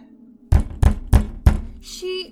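Four hard, heavy knocks on a door land in a steady, evenly spaced rhythm, each a loud, deep thud, followed by a short voiced sound at the end.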